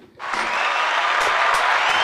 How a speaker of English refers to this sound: Come on. I'm gonna do my own applause with that. I love to hear it.